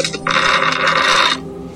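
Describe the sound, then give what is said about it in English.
A dense clatter of many dice emptied out of a dice bag and rolled for a perception check, spilling and tumbling together for about a second, loud, then quickly settling into quiet. “That was one hell of a perception check, but it took that many dice. Emptying my dice bag.”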